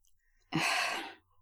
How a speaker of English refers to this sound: Are you surprised? I heard you gasping. We are all doing a collective gasp